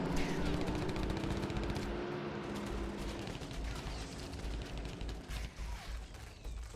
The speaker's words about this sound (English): A storm of bullets. Get down! It's a drive-by! The sound of rubber burning and gunshots filled the night.